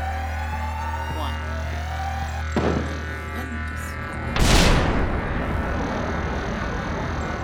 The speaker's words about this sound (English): This place is gonna blow! Explosion in 5. Clear the blast.